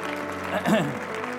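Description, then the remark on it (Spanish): An audience gives a big round of applause to God in a steady, dense wash of clapping, with a voice rising briefly above it midway and a sustained musical tone running underneath. “De un aplauso grande a Dios que se lo merece.”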